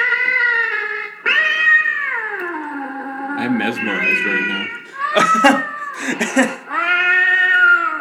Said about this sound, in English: We got this stupid fucking cat that makes noise.